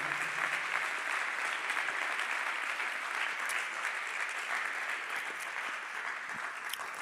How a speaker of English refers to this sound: Can you clap your hands to the Lord right now?